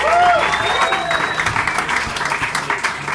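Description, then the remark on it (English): A crowd applauds Bo Johnson at the end of his set, a dense wash of clapping hands with a few whoops and a brief whistle rising above it, holding loud and even throughout. “Bo Johnson, everyone, let him hear it.”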